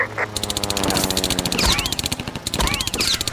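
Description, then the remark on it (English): A fast, unbroken burst of machine-gun fire, a hail of bullets cracking into an aircraft's cockpit canopy, rattles on for several seconds, punctuated by two heavy impacts, each followed by a whining, ricochet-like sweep. “Dixie barely ducked in time as a hail of bullets cracked into her canopy, sending cold air and glass whipping about the cockpit.”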